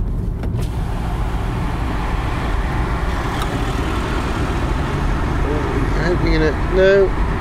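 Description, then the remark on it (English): A car drives alongside on the road, its steady low engine and tyre rumble continuing throughout, with a brief wavering tonal sound rising near the end. “No one was smoking in that car, but here they come alongside me again now.”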